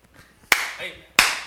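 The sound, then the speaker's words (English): An audience claps twice in unison, two loud, sharp bursts a little under a second apart, each trailing off in a brief smeared wash of hands. No one speaks. “Some of y'all can't clap on beat, but it doesn't say clap on beat.”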